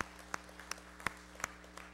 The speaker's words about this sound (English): Let's applaud them.